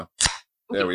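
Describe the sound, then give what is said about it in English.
A beer can cracks open with one sharp pop and a short fizzing hiss that quickly fades, with a person speaking briefly before and after. “Let me crack my beer ready.”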